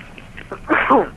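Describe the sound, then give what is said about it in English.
A harsh, raspy cough bursts out once or twice through a thin, tinny phone line, rising sharply after a quiet, faintly noisy start and then breaking off. “Are you coughing because you smoke some drugs?”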